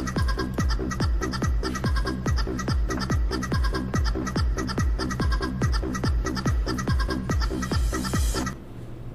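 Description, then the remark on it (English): A bouncy chicken dance tune plays loudly at a steady, quick oom-pah beat, with clucking-like accents over the rhythm, then cuts off abruptly just before the end. “Almost done with the chicken dance.”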